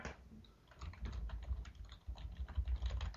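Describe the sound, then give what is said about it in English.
Rapid typing on a computer keyboard, a steady patter of crisp key clicks running continuously at a fairly quiet level with no voices. “I hear typing.”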